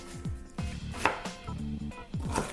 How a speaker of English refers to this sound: The other thing too is if you have really good knife skills, you could just chop it finely. So I don't have a food processor. So I'm just going to chop mine up really fine.